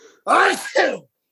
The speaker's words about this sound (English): Bless you.